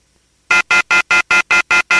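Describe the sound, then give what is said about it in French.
After a brief silence, a telephone call rings through to an answering machine with eight loud, evenly spaced electronic pulses, each short and buzzy with a bright high tone, repeating rapidly at about four per second. “c'est ça que fait nous t'entendre yon répondeur, yon answering machine et n'a pas essayer rejoindre yo.”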